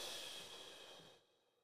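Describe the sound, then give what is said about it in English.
A single long, breathy exhale, airy and hissing, that fades out after about a second. It sounds like heavy breathing, with no voices. “Hey, this nigga breathing hard.”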